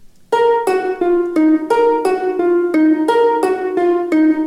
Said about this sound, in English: That's actually a harp sound. It sounds like this.